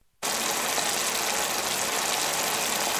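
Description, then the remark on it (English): Bacon frying in a pan, a steady, dense crackling sizzle that starts abruptly after a brief silence and holds at an even, fairly loud level, with no voices. “It is Bacon. What? That was Bacon. What? This is Bacon frying right here.”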